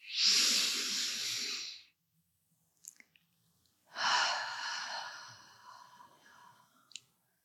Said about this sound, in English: This simple act of mindful breathing can bring a sense of calm, stress reduction in a very hectic day.